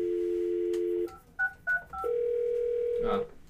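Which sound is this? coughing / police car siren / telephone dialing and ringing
telephone dialing and ringing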